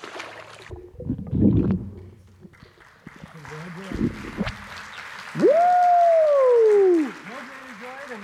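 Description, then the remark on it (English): Water sloshes and splashes as a person is dunked in a baptism by immersion, followed by a room of people breaking into applause and cheering, with one loud, drawn-out whoop rising above the crowd. “Well, based on your confession of faith, I'm now going to baptize you in the name of the Father and of the Son and of the Holy Spirit for the forgiveness of your sins and to receive the Holy Spirit.”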